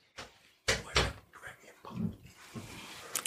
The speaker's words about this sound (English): Shut the door.